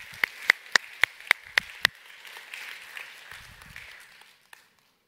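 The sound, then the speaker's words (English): An audience breaks into applause: a handful of sharp, evenly spaced claps ring out over a steady wash of clapping that carries on for about four seconds before fading away. “Can we actually just clap for that?”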